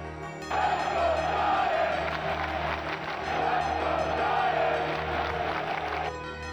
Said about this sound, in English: Not a lot of that cheering recently.